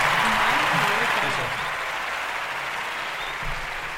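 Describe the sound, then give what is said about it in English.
A loud applause clap sound effect played on the live show Touchdowns and Tangents: dense applause of many hands clapping, a steady wash of noise that eases slightly after the first second and continues, with a brief voice-like murmur at the start. “Why the fuck are the sound effects so loud?”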